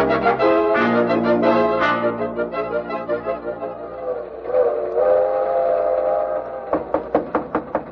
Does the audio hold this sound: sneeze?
no